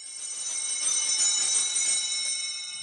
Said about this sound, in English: I love serving mass, and I loved ringing the bell, and I loved getting the altar and wine and giving it to the priest, and I really, really, I loved every minute of it.